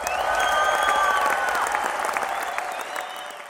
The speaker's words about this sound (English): Those are real cheers, well, by the way. That was really, that was all of us actually cheering.